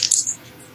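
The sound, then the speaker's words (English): Dice clatter briefly on a hard tabletop, a quick burst of bright clicks and rattles that settles within a fraction of a second, fairly loud, with no one talking, as a player rolls for a move in a tabletop role-playing game. “Holy crap, these dice are like doing the thing tonight.”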